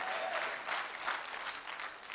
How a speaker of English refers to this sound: Give the Lord a clap and a shout by faith.